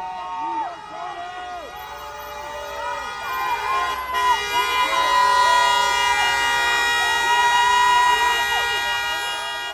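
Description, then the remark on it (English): Many horns of passing cars blare at once at a protest with signs asking drivers to honk, in long, overlapping honks that continue throughout, fairly loud, with indistinct voices mixed underneath. “We have signs that say, you know, like something like honk if, you know, you're for a movement.”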